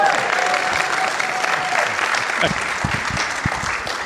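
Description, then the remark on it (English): A room full of people claps steadily for about four seconds, a dense, fairly loud wash of applause with a few voices faintly mixed in. “And this is where I pause for applause.”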